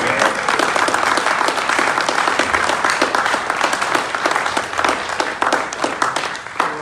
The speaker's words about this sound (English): And I thank God for the people that God has given us who have worked through the challenges and all of the of leading us in worship. So please clap for our worship team.